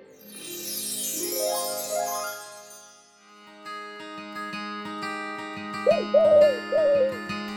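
bird, owl hooting

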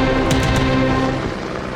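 vehicle, helicopter rotor sound effect

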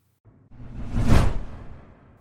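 sound effect, swoosh transition sound effect

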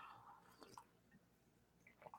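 food or drink, slurping coffee

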